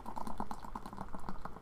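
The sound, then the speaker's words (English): A drink gurgles as it is poured into a tulip glass and spills over, a quick, uneven run of glugs and bubbly pops that continues steadily without any talking. “I hear that gurgle. Oh, shit, it's spilling.”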